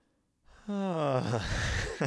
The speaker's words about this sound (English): Can I yawn?